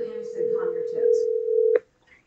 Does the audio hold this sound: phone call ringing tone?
yes